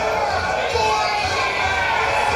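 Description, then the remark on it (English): A large arena crowd at ringside roars and chants in unison, a dense, loud wall of voices with a steady rhythmic pulse running through it for the whole stretch. “The crowd is calling for it.”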